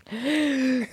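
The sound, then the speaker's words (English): A single sharp, voiced inhale, fairly loud, drawn in for under a second with a breathy hiss over a steady hum, as a person imitates the sound of an inhaler. “Like an inhaler.”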